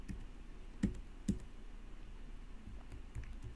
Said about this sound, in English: It's hard to play on this keyboard because it's a little chiclet keyboard.